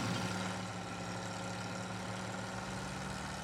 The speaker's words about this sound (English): This is a two-stroke 350cc Velarex. It is a Czechoslovakian-made, I'm gonna use the word vehicle pretty loosely. It's three wheels, canvas, some tubing, an engine, and a brake pedal, though it doesn't appear to be attached to anything.